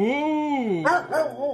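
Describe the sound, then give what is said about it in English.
A voice imitates a dog, loud: a long, wavering whine-like howl, then three short, breathy yelping barks in quick succession, over a steady low hum. “Repeat what the dog's saying.”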